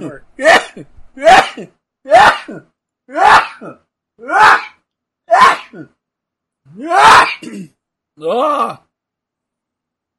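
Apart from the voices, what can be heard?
sneezing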